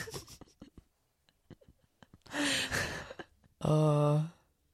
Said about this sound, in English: Why can't I stop yawning all of a sudden?